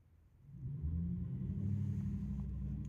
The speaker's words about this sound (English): Okay. A truck just pulled away, so that's going to be where I start talking.